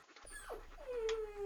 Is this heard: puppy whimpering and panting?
yes